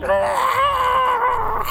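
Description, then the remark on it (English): A person voices a monster's repulsive scream: a sustained, strained, wavering howl with a harsh, groaning edge, held loudly and steadily for under two seconds. “And its breath just steams into your face as saliva hits the corners of your eyes as it lets out this repulsive scream.”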